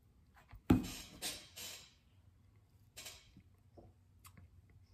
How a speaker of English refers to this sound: Fourth sip, you know, you're right in the sweet spot. You should know what you're gonna be drinking then. I'm going in for my fourth sip.